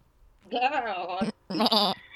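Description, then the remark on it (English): A person imitates a goat's bleat by closing the throat, making two wavering, nasal calls. The first is longer and trembling, and after a short pause comes a second, shorter one, fairly loud. “I cannot do a goat. My goat is terrible.”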